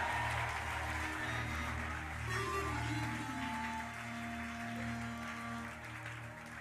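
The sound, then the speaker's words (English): An audience claps hands together to receive a blessing declared by a preacher, a sustained, steady burst of applause lasting several seconds, fairly loud, with sustained musical tones droning underneath. “If I hear your hand clap now, receive the blessing.”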